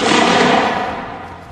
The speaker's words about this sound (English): As his men swarmed past him, a lone rifle shot echoed across the noisy battlefield.